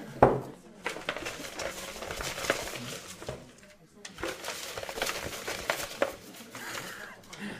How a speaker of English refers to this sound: Can you just hear the paper?